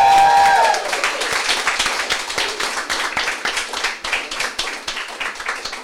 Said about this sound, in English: And without any further ado, a big round of applause for our three players!